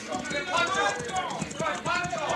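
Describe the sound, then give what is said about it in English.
Horses' hooves clip-clop in a steady, approaching rhythm as riders arrive at a mission, mixed with murmuring voices and a busy background of harmonic tones that partly covers the hoofbeats. “Oh, those horses. They must bring other refugees from the Lancers of the Devil.”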